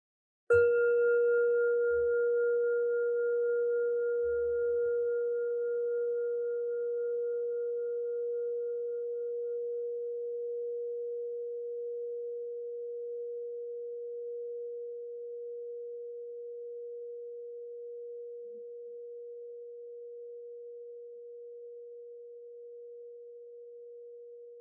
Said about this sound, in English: And in a moment, I'll ring the bell to close the practice.